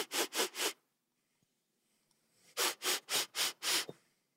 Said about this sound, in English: You hear the sniff.